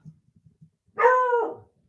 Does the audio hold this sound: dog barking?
yes